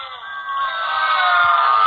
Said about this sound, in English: Booing is inappropriate. It's an awful story. All right, well, all right, that's enough from the peanut gallery.